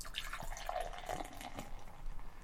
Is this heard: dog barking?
no